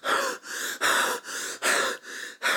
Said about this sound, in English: panted wildly.